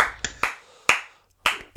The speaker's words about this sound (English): Round of applause